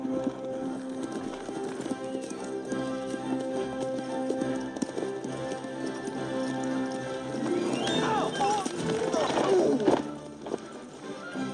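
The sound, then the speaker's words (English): Horse hooves clip-clop at a steady trot, with a busier burst of movement and a whinny-like cry rising near the end amid background activity. “Teach you to steal my father's horse.”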